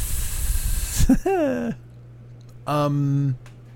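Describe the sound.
A person imitates a snake, letting out a loud hiss for about a second, then follows it with a couple of short, drawn-out voiced sounds.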